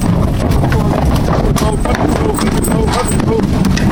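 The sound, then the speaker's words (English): Cattle hooves clatter and thump irregularly on a hollow metal floor as cows are loaded into the last pen on the bottom deck of an articulated double-decker lorry, loud, with indistinct voices in the background. “Let's go and load them up in the lorry.”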